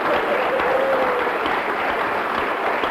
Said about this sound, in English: And if you love the Jamaicans, you give them all a hearty clap now. Amen.